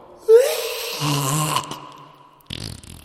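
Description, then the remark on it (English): A voice imitates a fart that rises into a scream, starting with a sharp breathy squeal, then a buzzing, wavering drone, and ending in a short raspy sputter. “It's a scream fart.”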